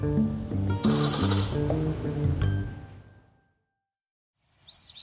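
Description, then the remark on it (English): A short burst of high, sweeping bird chirps arrives near the end after a pause, following a stretch of stepped musical tones with some clatter and hiss. “Who's that bird?”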